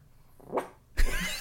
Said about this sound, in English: She might bark now. She's chatting. She's trying. Oh, I'm... You gonna do it? Are you going to do a proper bark for us? Can you do a big bark?